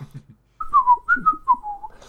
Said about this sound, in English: picked up an ornament from the mantelpiece and just sort of pretended to examine it whilst whistling to himself awkwardly.